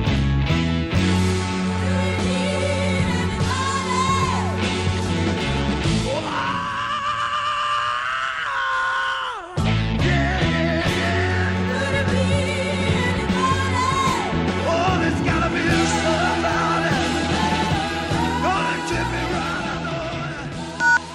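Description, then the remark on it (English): A loud full-band rock recording in which a singer lets out a long, sustained, wavering high scream over thinned instruments for a few seconds before the band crashes back in. “I mean, he probably has the rock and roll's greatest scream throughout that song.”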